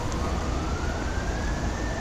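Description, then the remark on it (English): A fire truck siren wails with a slowly rising pitch as the truck approaches, steady and fairly prominent over a dense, loud rumble of engine and road noise; no one speaks. “Here come the fire department.”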